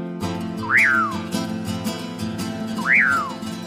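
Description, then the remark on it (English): Two calls of a common pauraque, a medium-sized nightjar, each a clear slurred whistle that sweeps sharply up and then glides down, spaced a couple of seconds apart over a steady low background hum. “According to folk legends, the siren-like call of today's featured feathered friend calls forth the presence of a roving, romantic spirit called Don Pucuyo.”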